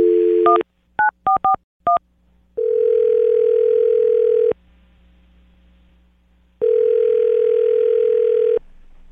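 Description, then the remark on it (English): A phone line tone gives way to a quick series of touch-tone dialing beeps as a phone call is placed, followed by two long ringback tones separated by a silent pause. No one speaks, and the tones sound clear. “All right, well, I'm going to dial the phone right now, get her on the phone, and get your second date.”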